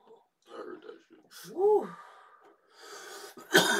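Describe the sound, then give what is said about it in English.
Low voiced murmurs and a rising-falling vocal sound lead into a single sharp, harsh cough near the end, fairly loud. “So, I coughed, though.”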